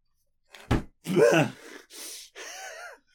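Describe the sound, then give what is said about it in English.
A short thump, then a few raspy breaths drawn in sharply, one after another like gasps, some with a slight voiced edge. No talking. “I saw you breathing. I heard it.”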